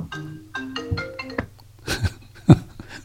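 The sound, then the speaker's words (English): A phone rings with a short electronic melody of bright, steady tones, followed by a few sharp, muffled knocks and clatters. “Stupid phones.”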